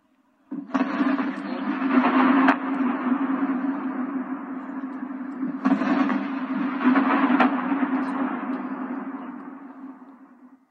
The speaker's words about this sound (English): Just one of several videos online with sounds of explosions.